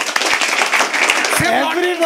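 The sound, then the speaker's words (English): An audience breaks into a dense, steady round of applause with many overlapping claps, voting by applause on whether changing bed sheets every 3 days is excessive; voices call out over the clapping toward the end. “Okay, how many of you think 3 days is excessive by round of applause?”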